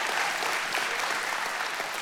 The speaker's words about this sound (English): Would you give the Lord a hand clap this morning? Amen.